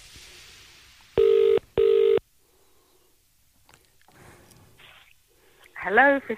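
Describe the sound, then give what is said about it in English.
A telephone ringing tone sounds once as a quick double burst of two steady electronic pulses, clear, followed by quiet background and a brief voice near the end. “Oh, what's happening? Is it ringing? Oh, it's ringing.”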